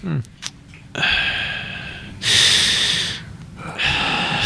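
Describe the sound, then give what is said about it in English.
Heavy, noisy breathing into the microphone, a few long rasping inhales and exhales in a slow rhythm, loud with no talking. “This is the heavy breathing episode. Breathing intensifies”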